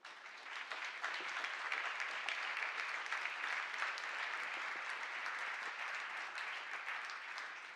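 An audience applauds steadily for several seconds as a couple is invited up, a dense, even wash of many hands clapping at once with no voices standing out.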